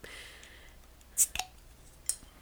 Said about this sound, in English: I'm opening my beer.